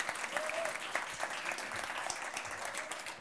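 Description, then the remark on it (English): An audience claps steadily for a few seconds for an intern who came from Brazil, a dense, even patter of many hands with no break, and a brief faint whoop rises over it near the start. “Let's just give Levy a round of applause.”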